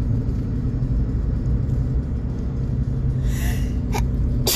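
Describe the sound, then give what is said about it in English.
A sharp sneeze bursts out near the end after a gasping intake of breath, with a couple of quick follow-up breaths, all over a steady low rumble like a running car. “Oh, I gotta sneeze. Oh, I hope I sneeze.”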